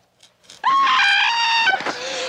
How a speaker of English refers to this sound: He cuts her to make her scream.